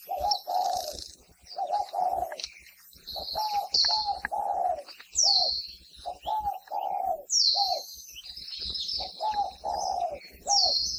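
A spotted dove coos in repeated soft, low phrases, while other small birds chirp and tweet brightly around it in a busy outdoor chorus.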